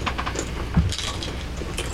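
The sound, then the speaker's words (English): A small troll bell jingles with light, bright metallic tinkling, scattered quick clinks over about two seconds and one slightly louder knock in the middle, with no voices. “I have a troll bell right here. Was that it?”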